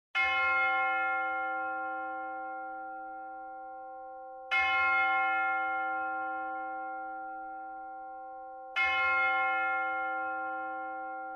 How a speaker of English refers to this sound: The bell begins to strike 12, and the spirit disappears. As the last bell chimes, the ghost of Christmas yet to come enters slowly and silently.